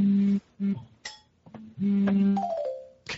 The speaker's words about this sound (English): Could you hear his phone vibrating at the end? Yeah. Oh, were people calling him? No. I think it was notifications.